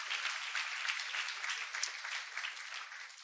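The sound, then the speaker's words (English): A church audience applauds steadily as a clap offering to God, a dense wash of many hands clapping at an even, moderate loudness without pause for a few seconds, no voices standing out. “Let's just give a clap offering to God one more time for all the amazing things He's done the last 2 weeks.”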